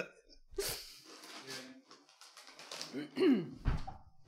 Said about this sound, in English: Okay. Bit of rustling. Hang on.